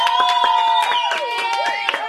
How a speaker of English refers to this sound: So let's give them a well-deserved round of applause.